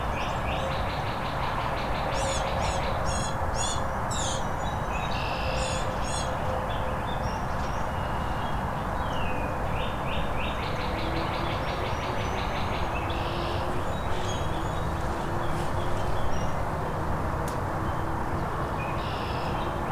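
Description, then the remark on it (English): Two northern cardinals and a ruby-crowned kinglet call in bursts of bright chirps over a steady, rushing background noise, clustered early on and again midway, with no talking. “Gnat catcher's making a lot of sounds, but it's probably being drowned out by this cardinal behind me. Oh, two of them now. Now Ruby Crown Kinglet has come to join them.”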